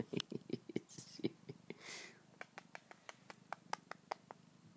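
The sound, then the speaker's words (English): A cat purrs in a low, steady rumble, while quick, sharp rubbing and tapping noises from the cat nuzzling come in an uneven rhythm over it. No one speaks. “Nuzzling and mauling me. Why don't you look at that? I'm forming a bond with a cat.”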